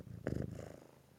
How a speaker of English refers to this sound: Hold on, she's going to purr. You got to tell me if you can hear it. Okay. I can't hear it.